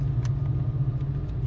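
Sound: train passing by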